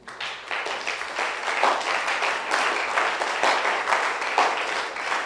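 An audience breaks into sustained applause for the children, many hands clapping together in a dense, steady wash of sound that fills the room for several seconds without talking.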